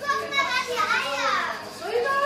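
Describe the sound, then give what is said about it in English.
High-pitched voices of a group of preschool children chatter and call out over one another as they crowd into a small room lined floor to ceiling with large wooden incubators, the breeding room of an ostrich farm in Cologne, Germany. Several kids talk at once in a busy, continuous babble with rising and falling squeals. “A group of curious preschoolers crowd into a small room, lined from floor to ceiling with large wooden incubators.”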